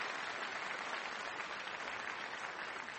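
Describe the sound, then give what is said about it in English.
An audience claps steadily and densely for the whole stretch, a dense wash of many hands with no pauses and no voices cutting through: a round of applause for Robert Rosenkrantz at an evening debate event. “And I would just like to invite one more round of applause for Robert Rosenkrantz for making these possible.”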